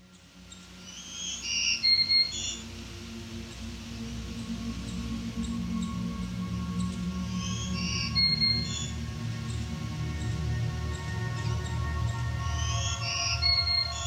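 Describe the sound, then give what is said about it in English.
A black-throated green warbler sings a short, high, buzzy phrase of wheezy notes, repeated three times at spaced intervals over a steady low rumble. “The black-throated green warbler is an energetic boreal bird famous for its distinctive and continuous songs.”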